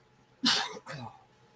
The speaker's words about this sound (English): Guys, I'm going to sneeze. Be right back.